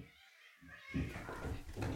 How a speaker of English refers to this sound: I just had to go break up a little cat scuffle, kerfuffle. A literal cat fight. Yeah. I mean, not a fight, but. Well, to Frying Pan, it's not a fight. He's just playing. To Pancake, it might be a fight.